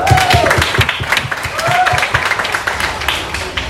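An audience gives a steady round of applause, many hands clapping densely and fairly loudly throughout, with a couple of brief whistle-like tones rising above the claps.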